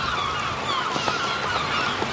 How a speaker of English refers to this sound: And then I thought, hey, why not? I'll put some seagulls.